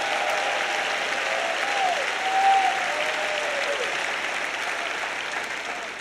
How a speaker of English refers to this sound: Well, I think everybody clap on that. Surely.